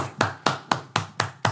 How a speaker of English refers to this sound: Let me clap for myself.